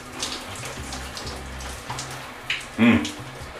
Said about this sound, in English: Giving life to the lovely, what's lovelier than that? Giving life to this warm, lovely shower.